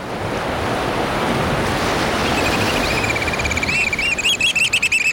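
Steady roar of surf washing over a rocky shoreline on the Pacific coast, loud and continuous, with high piping calls of the Black Oystercatcher breaking through in the final couple of seconds.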